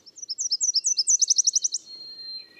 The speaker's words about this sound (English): A tiny Nashville warbler flies to its nest, a fat caterpillar clamped in its beak.